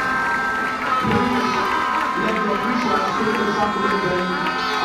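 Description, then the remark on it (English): An audience at Shiloh 2021 claps and cheers in a dense, steady wash of sound lasting the whole clip, with many voices shouting and a sustained musical tone running underneath. “I can see somebody clapping because your prayers have been answered at Shiloh 2021.”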